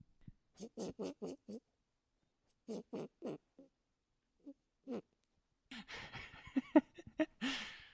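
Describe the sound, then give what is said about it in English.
Penny, a Cavalier dog, makes short, low groaning pulses in quick runs of three or four with pauses between, then shifts into loud, breathy snorts and huffs while sniffing the microphone. “So those were some groans from Penny.”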